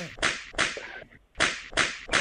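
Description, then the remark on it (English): Five loud, sharp whip cracks used as a spanking sound effect snap out in a quick rhythm, two in a row, a brief gap, then three more, each with a bright hissing tail. No one speaks. “Jingle bells, jingle bells, jingle all the way in a spank fest.”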